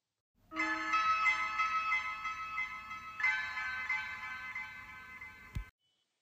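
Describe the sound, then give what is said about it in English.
A short burst of bright, bell-like music with shimmering sustained tones, swelling again midway before cutting off abruptly with a click. No one speaks over it. “Hit my music.”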